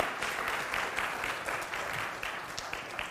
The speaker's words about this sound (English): He was formally recognized this week as an ordained minister within the BFC. So yes, please, a round of applause. Yes.